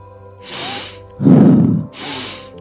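Three strong breaths in a row during a guided breathing exercise: a hissy inhale, a heavier, rougher exhale, then another airy inhale, each lasting under a second with soft background tones underneath.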